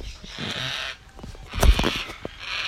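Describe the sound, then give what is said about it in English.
A baby black cockatoo calls with harsh, rasping squawks, repeated almost continuously, with one louder burst in the middle and no talking. “That bird unfortunately dies within the nest because most black cockatoo species, is the parents spend up to 12 months feeding that baby. So, yeah, he's having a good old talk”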